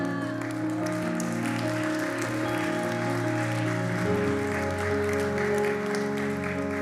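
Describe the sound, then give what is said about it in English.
Steady applause from a Chi Alpha audience after a talk on prayer, a dense wash of many hands clapping at an even level for several seconds, with sustained musical tones holding underneath. “I didn't want clapping.”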